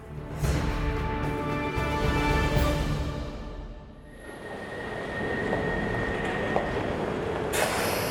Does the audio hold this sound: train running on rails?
yes